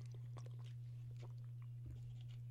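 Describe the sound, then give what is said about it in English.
Someone takes a swig of water: soft, quiet wet mouth clicks and swallowing sounds scattered over a couple of seconds, set against a steady low electrical hum, with no talking. “Let me get a swig of water right now because I don't want to not talk and have dead air.”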